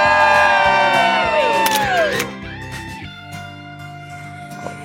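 A crowd outside the Today show in the heart of Midtown Manhattan cheers and whoops loudly on a beautiful Thursday morning, high shouts sweeping downward over a dense roar, then fading to a lower murmur of voices after a couple of seconds.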